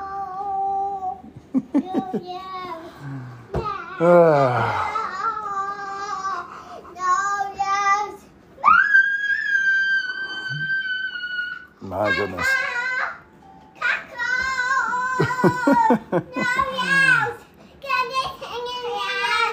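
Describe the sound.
A young child sings loudly in a high, bright voice, moving through choppy phrases and one long sustained note, with an adult briefly speaking between the lines.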